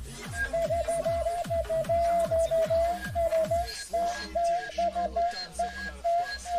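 An otamatone plays a reedy, whining melody that wobbles and slides in pitch, carried over a loud, thumping hard-bass beat with rapid pulsing kicks.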